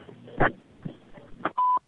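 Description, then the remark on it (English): A short, loud answering machine beep at the end of The Hennepin's recorded greeting, a single steady electronic tone near the end, preceded by a few muffled clicks and thumps on the line. “At the beep, please leave a short message and your phone number, and we will return your call as soon as possible.”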